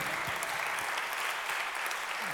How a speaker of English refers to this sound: Come on, give God a hand clap of praise for that.